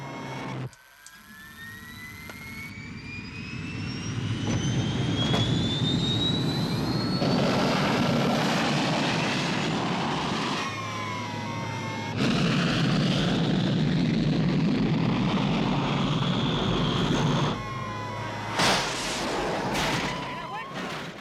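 A jet plane roars loudly and steadily, its high engine whine sweeping upward as it powers past, with a deep rumbling wash underneath and a few abrupt shifts in the noise.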